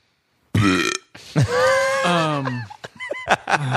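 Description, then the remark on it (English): A long, loud, drawn-out belch with a rough, croaking tone, rising and falling in pitch before breaking into a few shorter gurgling bursts, with no talking. “We got a revolving door because I will belch in people's faces.”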